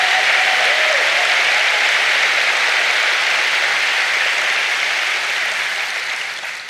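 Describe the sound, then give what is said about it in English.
A church audience claps hands during a sermon in dense, sustained applause, a steady bright wash of many overlapping claps that holds strong and then begins to taper off at the end, with no voices over it. “Come on, clap your hands like you believe I'm preaching the truth.”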